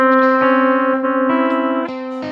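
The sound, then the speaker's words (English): Guitar notes ringing on the third string, with the C played there to get a ringing sound, several picked in steady succession over a sustained, overlapping mid-pitched tone that keeps sounding beneath each new pluck; moderately loud, no voices. “Yep, so instead of playing it here, though, I actually play the C here so I can get that ringing sound.”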